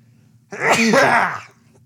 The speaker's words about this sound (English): I totally feel like I have a sneeze coming on.